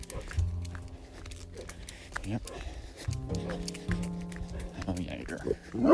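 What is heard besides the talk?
dog barking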